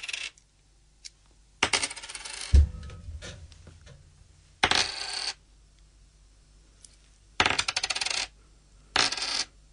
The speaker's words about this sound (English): I will drop the coins from smallest to biggest. Okay. Right, so everyone just, let's just take a knee. Let's just get very quiet. Here we go. 5 coins from lowest to highest.